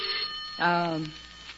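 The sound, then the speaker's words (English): A telephone bell rings with a bright, sustained trill that fades as a voice briefly cuts in, against a quiet background. “Give me that phone.”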